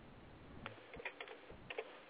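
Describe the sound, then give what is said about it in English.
Soft, irregular clicks of typing on a computer keyboard, a handful of keystrokes spaced unevenly over a couple of seconds, faint against a low background hiss. “I can hear you typing.”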